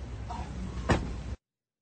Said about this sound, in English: Boom. Door closed. And if you listen carefully, I'm going to let you hear it again.